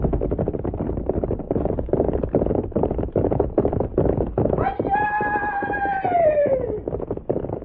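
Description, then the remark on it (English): Hooves pound in a fast, steady gallop, loud throughout, and partway through a horse lets out a long, falling whinny over the drumming hoofbeats. “You get on horse. We go meet fellow who come.”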